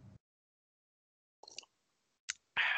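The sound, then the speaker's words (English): Someone slurps a drink: a soft wet sip after a pause, a sharp click, then a loud, hissy burst of slurping at the end, with no talking. “Sorry, I'm just drinking my pussy juice right there.”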